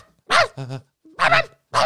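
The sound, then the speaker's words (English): Someone mimics a chihuahua yapping: four sharp yips in quick succession, loud and high-pitched, with a brief pause before the last two. “You're like one of those chihuahuas.”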